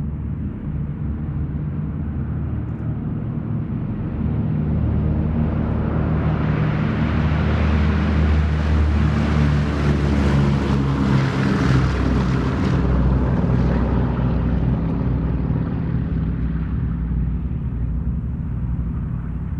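A heavily laden propeller bomber with a full bomb load roars as it takes off, engine drone swelling to a loud peak midway and then easing slightly, with deep rumbling throughout and no voices.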